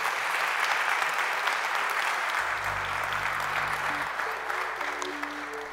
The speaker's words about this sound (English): Come on, let's give God a hand clap of praise for that.